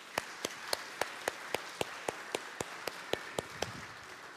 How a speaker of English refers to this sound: Well, it's unusual for a minister to get applauded before they speak, and oftentimes even after they speak as well.